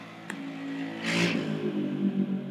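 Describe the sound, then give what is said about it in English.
A noisy motorbike passes outside, its engine droning steadily, then swelling into a louder, raspy roar midway before settling back to a rumbling hum. There is a sharp tick early on and no talking. “Yes, we're going to pause for the noisy motorbike.”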